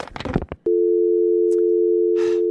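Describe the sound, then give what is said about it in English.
A steady, unbroken electronic phone on-hold tone hums on after a short burst of speech as a caller is put on hold, holding at one pitch with a faint click and a brief rustle partway through. “Can I put you on hold for a minute just while I consult with my supervisor, please?”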